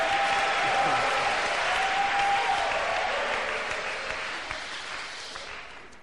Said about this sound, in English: Give yourselves a big clap, hallelujah. And a shout of victory.